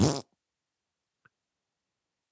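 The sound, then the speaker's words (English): A short, loud, buzzy raspberry blown with the lips, a voice imitating a fart, lasting a quarter second and followed by silence with one faint click. “Yeah, that's my fake fart noise for that.”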